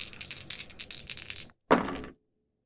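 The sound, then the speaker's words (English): An action die and two challenge dice clatter and rattle together for about a second and a half, followed by a short, louder clack as they settle on a hard surface showing 5, 3 and 6, then silence. Fairly loud. “5 on the action die, a 3 and a 6 on the challenge dice for a weak hit.”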